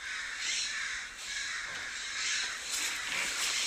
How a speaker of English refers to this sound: There's like four different types of birds screaming.